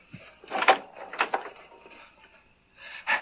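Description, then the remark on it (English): A door opens as a woman comes to it, with a few scraping, rustling bursts of sound that swell and fade over a few seconds, ending in one more brief scrape; no one speaks. “She comes to the door.”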